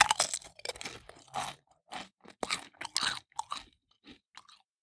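Crisp crunching of snack food in quick, uneven bursts, like someone biting and chewing through something brittle, with short pauses between mouthfuls and no one talking.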